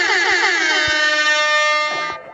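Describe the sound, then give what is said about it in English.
A loud, sustained air horn blast with a bright, brassy, harmonic-rich tone, holding steady for about two seconds before cutting off abruptly; no voices accompany it. “Let me sound that alarm.”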